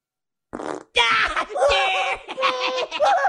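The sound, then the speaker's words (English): A short, buzzy fart is followed after a brief pause by a long, loud, sputtering one that warbles and changes pitch for several seconds, prominent. “I'm all out of farts now.”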